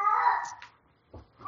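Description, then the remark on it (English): An aggressive pet cat lets out a drawn-out, strained yowl that fades, followed by a short pause and the start of another brief, harsh cry. “That's an aggressive cat.”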